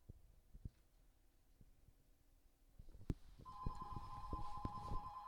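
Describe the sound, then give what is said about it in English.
A telephone starts ringing a few seconds in, a steady electronic tone that continues to the end, fairly loud, over scattered low thumps and knocks with no talking. “We got the phone ringing.”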